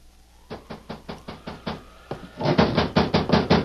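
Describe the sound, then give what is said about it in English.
Rapid knocking on a door one night during a rainstorm, a quick run of firm raps that pauses briefly and then resumes louder and faster, with no voices. “Then one night, right in the middle of a rainstorm, there came a knock at the door.”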